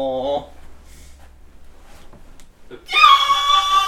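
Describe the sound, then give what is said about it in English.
A short voiced sound opens, then near-silence, then a loud, strained, high-pitched muffled scream bursts in and holds for about a second until the end. “Internal screaming.”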